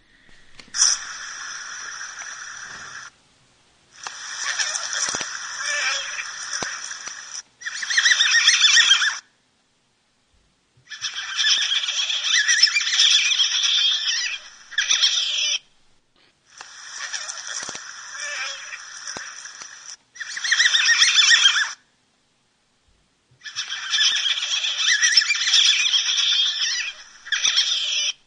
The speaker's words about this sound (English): And so if you'll bear with me, I have of course, because people love river otters, there's a clip here of just some of the different various vocalizations that North American river otters will make.